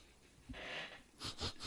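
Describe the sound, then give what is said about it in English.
Someone sniffing the aroma of a lager beer with their nose down in it: one long, breathy inhale, then three quick, rhythmic sniffs in a row, all fairly faint with no talking. “Go ahead and take a few sniffs of this, put your nose right down in it, and see if you can smell anything there.”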